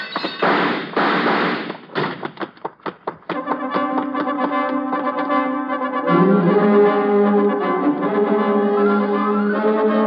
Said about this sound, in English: And knock the lamp off his desk and beat it before he can find the range.